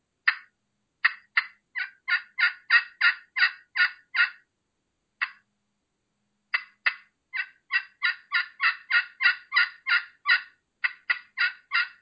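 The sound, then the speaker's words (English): A Woodhaven Vision turkey call produces basic hen clucks and yelps, two steady runs of raspy, evenly spaced notes separated by a lone cluck, fairly loud with no talking. “Dude, if I can cluck and yelp a turkey in and that's all I've got to do is just some basic clucking and yelping, just like so, I'm going to run a Woodhaven Vision right now.”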